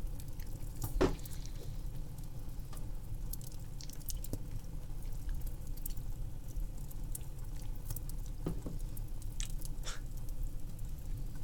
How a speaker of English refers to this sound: This is Wegmans eggnog popcorn. It's actually pretty good. Okay, here's something I gotta talk about. I'm gonna chew and swallow so I'm not